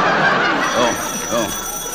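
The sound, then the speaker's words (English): A telephone rings through a noisy background while a voice speaks briefly over it; the ringing is moderately loud and continuous across the short stretch. “The telephone, answer it.”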